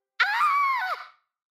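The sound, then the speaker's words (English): A single loud, shrill scream of fright bursts out, held for about a second before its pitch drops and breaks off into silence. “My blood turns cold and I scream.”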